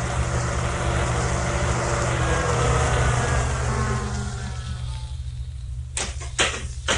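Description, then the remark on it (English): A car engine rumbles steadily with a low droning hum as it drives up in broad daylight, its noise easing off partway through as it settles, followed by a few short sharp crunching bursts near the end. No one speaks. “You think a cop would come driving up here in broad daylight like that?”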